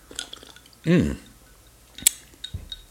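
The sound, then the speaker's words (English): A short gurgling pour of a drink of Dr. Pepper with Captain Morgan's Tattoo rum and Mio black cherry flavoring into a glass over two ice cubes, followed a moment later by a single sharp clink, with faint background rustling and murmur around it. “I think I poured.”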